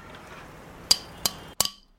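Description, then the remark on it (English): Three loud, clanky metallic knocks on an office door, sharp and ringing, spaced unevenly with the last one sounding doubled, over a faint background hiss and no voices. “Goes take a seat in his comfy leather chair and hears a knock at the door. Very loud, clanky metal, just like...”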